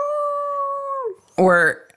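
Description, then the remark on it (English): A person imitates a wolf howl with one steady, sustained note lasting about a second that slides downward as it fades, followed by a short, loud burst of voice. “So is it like, here, wolfie, wolfie, wolfie, wolfie? Or do you have to howl?”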